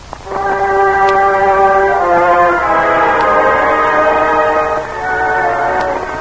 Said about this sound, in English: Late that November afternoon, the train pulled into the Pennsylvania town.